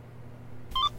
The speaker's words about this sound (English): What's that? Just got a notification.